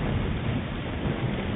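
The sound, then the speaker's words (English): A steady, dense roar of wind, rain and surf, rumbling and continuous at an even, fairly loud level, with no voices and no distinct breaks; a recording carried on the record aboard the Voyager spacecraft. “Wind and rain and surf.”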